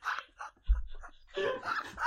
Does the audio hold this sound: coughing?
no